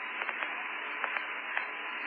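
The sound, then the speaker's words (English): Steady band-limited radio static hisses throughout on the communications link with the spacecraft Challenger as it descends past 2,700 feet over Camelot, a dense crackling wash with a few brief brighter pops and no voice coming through. “Awful lot of static, Jack.”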